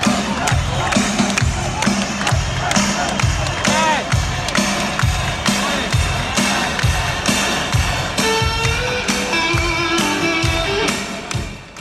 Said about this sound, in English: No, it's pretty cool that Tom Dumoulin wins the Jerusalem time trial. After he being takes the world stage champion victory. He's on web. The defending champion of the Giro. And the crowd in Israel is just going wild.